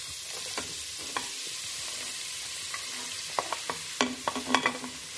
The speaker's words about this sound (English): Okay, so when you're cooking with oil, it's very important before you add the vegetables that the oil is hot, and you can test this by adding a piece of onion. And once you hear that sizzle, you can add the rest of the vegetables.